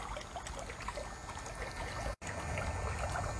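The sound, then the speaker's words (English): Steady flowing water runs continuously, an even rush like a stream or trickle, with a brief dropout near the end and no voices. “She looks to the sky and she calls forth the water.”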